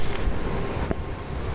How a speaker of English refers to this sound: traffic here, a little truck going by.